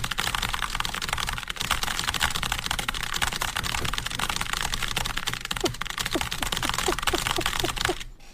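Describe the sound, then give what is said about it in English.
Extremely rapid typing on a computer keyboard at about 300 words per minute in a 15-second typing test, keys clattering in a dense, nonstop flurry for several seconds, fairly loud, with no voices. “That legit just sounds like you're just pressing a bunch of keys”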